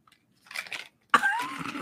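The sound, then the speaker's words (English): Someone chews a piece of candy: a short, soft burst of moist chewing, a pause, then a louder, longer stretch of crunching and smacking with a faint squeaky edge. No talking. “I'm afraid to chew. Chew it.”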